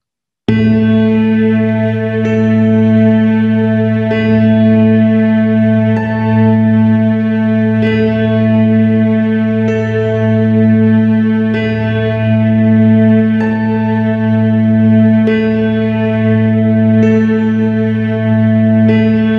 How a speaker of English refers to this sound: So let's tone for a few minutes to this. Remember, it's through your bones that you feel this, but hum quietly.